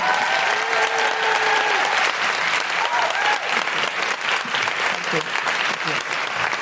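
A crowd applauds steadily, dense clapping filling the whole stretch at an even, loud level, with a few faint tonal sounds and murmurs mixed in.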